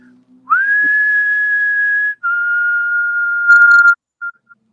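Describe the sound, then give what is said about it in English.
Someone whistles a short, famous melody: a rising note held long, then a slightly lower sustained note, ending with a couple of quick short chirps. No one speaks. “No famous whistle.”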